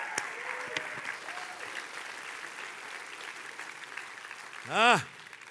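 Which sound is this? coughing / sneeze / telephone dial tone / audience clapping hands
audience clapping hands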